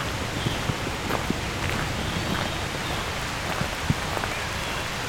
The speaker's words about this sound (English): Presence of trees can really make rain sound louder than it is. Sound a lot more than it is.